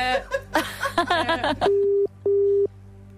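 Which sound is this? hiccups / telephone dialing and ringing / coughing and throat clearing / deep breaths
telephone dialing and ringing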